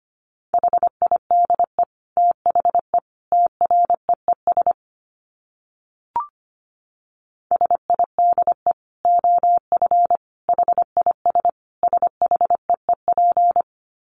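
A steady, mid-pitched Morse code tone keys out rapid dots and dashes at about 25 words per minute, with a short pause and a soft pop midway before the sending resumes.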